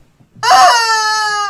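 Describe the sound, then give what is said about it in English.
A rubber chicken toy squeezed once lets out a loud, shrill, wailing squawk that holds for about a second, its pitch sagging slightly, alone with no talking. “Say something you hate and then squeeze the chicken.”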